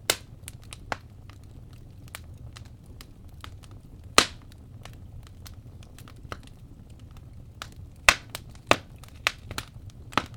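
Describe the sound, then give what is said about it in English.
A wood fire crackles steadily, with irregular sharp pops and snaps, a few louder ones standing out, over a soft low rumble. No voices. “Now for this classic edition, there's some good crackling in this one. Let's play a little bit of crackling.”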